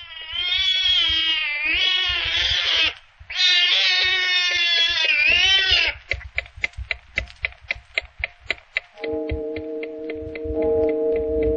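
A one-eyed cat lets out two long, loud, drawn-out meows, then falls silent as a clock ticks steadily, joined near the end by a sustained droning tone.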